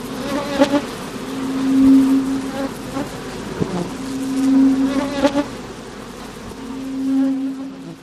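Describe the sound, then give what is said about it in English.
Loud buzzing of bees swells and fades in three waves, a steady droning hum with harmonic overtones that rings and reverberates in a room, with occasional faint clicks. “The buzzing grew louder, filling the room with a reverberating hum.”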